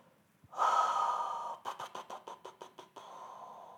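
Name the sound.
voice imitating quiet snoring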